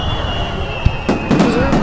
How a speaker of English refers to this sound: Small fireworks. We can do something. Sure. Let's give him some fireworks and some cheers.